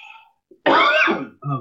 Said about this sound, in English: Forgive me, I have a little bit of a cold. So no problem. I know it's going to be irritating to hear me coughing, and I apologize.